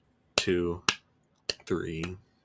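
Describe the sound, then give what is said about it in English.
Four sharp, crisp slaps of a hand on a leg in an uneven rhythm, keeping count of seconds during a breath-hold exercise, with a voice making wordless sounds between them. “And I clap on my lap, like on my leg like this.”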